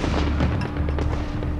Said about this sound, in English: But when his men returned to celebrate their victory, they were hit with musket fire from across the river, which killed combatants and non-combatants alike.